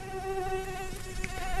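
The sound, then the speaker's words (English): A mosquito's thin, steady high-pitched whine hums continuously, its tone wavering slightly as it hovers, with no voices present. “We're now learning that young mosquitoes who eat even small pieces of plastic.”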